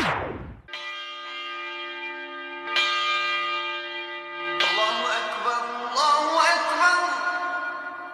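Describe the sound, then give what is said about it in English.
Church bells ring out in a slow series of strikes, each loud clang leaving a long shimmering hum that overlaps the next, growing denser toward the end, with no voices. “The ringing of the church bells, the call to azan, and the trumpeting of the conch have been silenced for 67 days of lockdown as the gloom and despair of uncertain economic times and lives lost to coronavirus fills the silence.”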